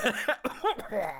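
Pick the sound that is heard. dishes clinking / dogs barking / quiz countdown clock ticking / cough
cough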